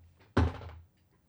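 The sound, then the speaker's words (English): A single heavy thud as creatures slam against a door trying to break it down, loud, with a short boomy resonance that fades within half a second. “The door is holding strong that these creatures are slamming against, trying to break it down to get to oh, you.”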